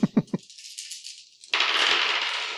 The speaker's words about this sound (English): Well, let's roll a die each and see who gets the highest gets to go. I got a 3. I got a 6. You get to go first.